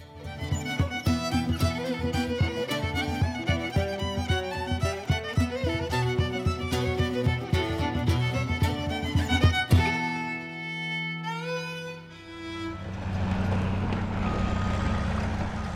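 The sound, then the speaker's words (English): After a stretch of upbeat music, large heavy haul trucks loudly drone and rev up through rising gears, then settle into a steady low rumble, hauling load after load of century-old toxic mine waste away from the Silver Bow Creek corridor in Butte. “That's the merry sound of life-sized Tonka trucks hauling load after load of century-old toxic mine waste away from the Silver Bow Creek corridor that carves through the center of Butte.”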